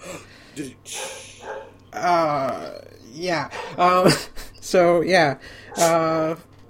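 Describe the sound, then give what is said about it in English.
A series of short yips and barks from the Nintendogs video game dogs on the Nintendo Switch, with pitch-sliding whines and a low growl, coming in uneven bursts over a few seconds against a quiet background. “your really dogs good have made it. An appearance.”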